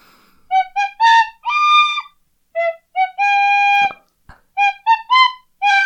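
A tin whistle plays the Indiana Jones movie theme, a bright melody of short rising phrases of quick notes broken by a few long held tones, loud and clear with no talking over it.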